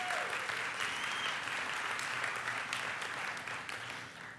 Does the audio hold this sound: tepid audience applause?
yes